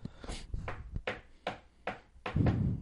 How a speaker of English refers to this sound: Knock on wood.